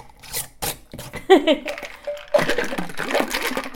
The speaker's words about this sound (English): That's awesome. Fun sound. Whoa, I forgot. Effervescence. So it's mostly hop water, and then the cordial and the pineapple juice.